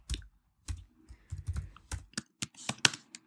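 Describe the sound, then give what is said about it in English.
Quick, irregular keystrokes on a computer keyboard as someone types "sexy apron" into a search on Etsy.com, clear, with bursts of clicks and brief pauses between them, no voices present. “I'm typing sexy apron.”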